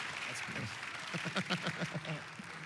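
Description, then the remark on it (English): An audience applauds steadily as a man returns to his seat, a dense, continuous patter of many hands clapping at once, with a few voices calling out over it and the sound swelling slightly midway. “Let's give him a round of applause as he's seated.”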